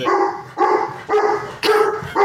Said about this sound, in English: I made the dog angry. He doesn't like the beach.